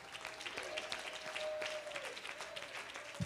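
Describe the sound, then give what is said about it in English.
A crowd claps their hands together in a dense, continuous burst of applause, steady and fairly loud, with a sustained musical tone ringing faintly underneath. “Clap your hands about that.”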